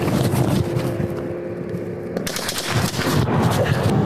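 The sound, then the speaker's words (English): Rapid, repeated gunshots crackle through a dense wash of background noise, the bursts coming close together like sustained fire, with no clear voices; a fleeing driver shoots at police officers in Louisiana while heading toward Cameron. “Listen, you'll hear the gunshots.”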